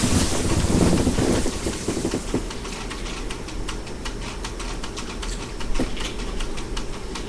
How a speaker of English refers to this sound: I'm just going to get a drink of water.